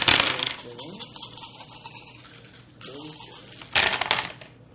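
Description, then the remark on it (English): Two weapon dice clatter and tumble across a tabletop during a game in three quick bursts, crisp, with quieter gaps between rolls and a faint murmur of voices underneath. “Using the two weapon dice for width, obviously.”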